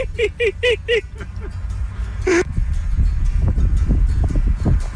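An eagle on a golf course gives a quick run of four sharp, high chirping calls as it flies away, then one more a moment later, followed by gusty wind and rumbling noise.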